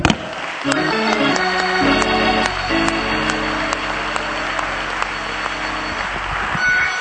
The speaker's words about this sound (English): And we're just going to stand right now and clap our hands to the Lord.